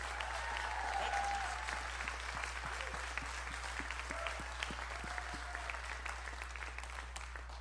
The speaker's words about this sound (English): Can we give them more than a golf clap as well, just to honor them? Yeah, come on.